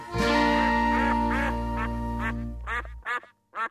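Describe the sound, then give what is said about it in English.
A series of nasal duck quacks rings out over a sustained musical chord, then two or three louder quacks follow on their own after the music cuts off. “That was part one of our two-part Drabble News Ducks Are Bastards special”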